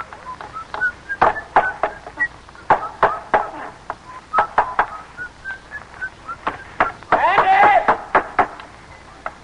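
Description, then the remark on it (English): A young lawyer hammers nails to fix his sign over a log cabin door in a wilderness clearing at Nashville, Tennessee, in 1789: sharp knocks in uneven bursts, with a faint tonal murmur underneath and a brief thicker swell of sound near the end. “A young lawyer is nailing his sign over a cabin door.”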